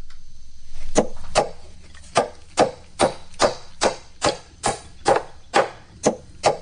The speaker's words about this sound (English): It's hammering. Hammering nails into a 2x4.